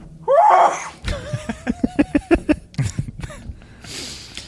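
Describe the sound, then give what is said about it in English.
A loud, sharp sneeze-like burst with a wheezy intake of breath, followed by a run of quick, rhythmic breathy vocal bursts and snorts, fairly loud. “Uh-oh. Bless you.”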